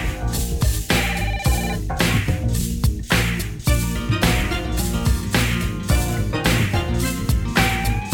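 A telephone rings at the beginning of a song, amid loud, dense music, its bright repeating trill woven into a driving beat rather than standing alone.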